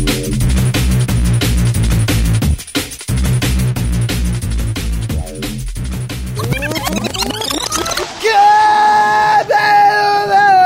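A loud, driving music track plays, then gives way to several seconds of loud yelling and screaming voices, strained and wavering, over a noisy background.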